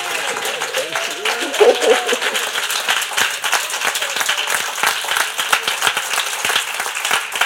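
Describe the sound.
A crowd claps steadily in a dense, continuous wash of hand claps, with a few voices calling out and cheering underneath throughout.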